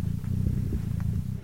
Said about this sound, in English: That's Lemmy purring.